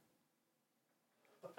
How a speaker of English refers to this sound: Excuse me. There's that fall cough.